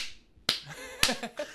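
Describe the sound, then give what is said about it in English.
Three sharp hand claps about half a second apart, crisp, with a brief ringing decay after each and no talking; a person demonstrating clapping. “somebody's in the back clapping like this.”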